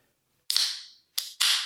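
A sharp metallic crack with a fizzing hiss as a non-alcoholic beer can is cracked open to be poured, followed by two more short bursts of bright, hissing fizz, with no voices.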